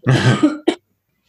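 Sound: coughing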